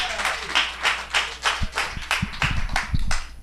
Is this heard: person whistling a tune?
no